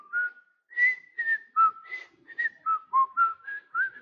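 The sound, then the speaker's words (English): A person whistles a bright, melodic tune while walking down the street in Mount Airy, with a string of clear sustained notes that step up and down in pitch, each separated by short breaths and pauses. “I walk down the street. I whistle.”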